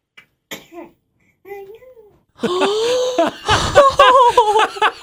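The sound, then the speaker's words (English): A baby of about two or three months, in a played video, gives a quick, sharp little sneeze, then a brief high-pitched baby vocalization, before louder adult laughter and chatter take over. “So it's a baby. He's sneezing.”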